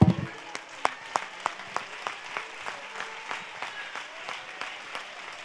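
An audience standing on its feet gives the Lord a clap offering of praise, clapping together in a steady, quick rhythm, sharp in-time claps standing out above a continuous wash of scattered applause for several seconds.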